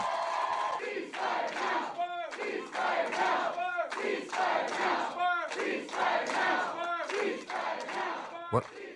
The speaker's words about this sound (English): And the whole room goes crazy, yelling, ceasefire now.